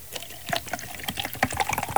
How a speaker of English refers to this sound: Let's do the milk and ketchup mixture first, I would say. You pour it in, but then you also use the hot dog as a stick to sort of stir it with.